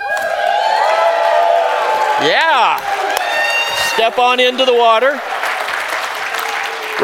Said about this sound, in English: Now, whenever you guys help me, whenever the water walls up, you hoop and holler and shout and clap, all right?